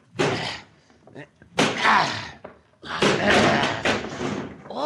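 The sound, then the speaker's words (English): A locked shack door at a camp is battered and forced open: three loud, heavy thuds a second or so apart, each a booming impact with a rattling tail, the last one longest, as though it gives way. “He may not be in here, but this door is locked. Try to break it down.”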